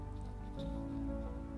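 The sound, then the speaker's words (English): Soft, steady ocean waves rolling in and back out hiss gently beneath a sustained, calm musical drone, a quiet and even bed of surf-like noise with no voices. “Notice the waves rolling in and rolling back out. And you really can hear the soft sounds of the ocean as the next wave rolls in and back out.”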